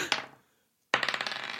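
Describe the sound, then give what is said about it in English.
Dice clatter across a hard surface in two bursts: a short rattle that fades out, a brief silence, then a longer, louder run of rapid clicking tumbles. No one speaks. “I think he's just rolling. No, I just remembered dice.”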